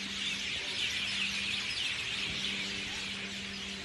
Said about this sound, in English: All right, right now I'm in Maui and I hear thousands of birds. Check this out.